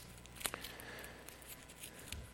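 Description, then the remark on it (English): A $20 paper banknote being crumpled by hand: soft, irregular crinkles and a few sharper crackles, fairly quiet, with no talking. “Now, I'm going to kind of crumple it up.”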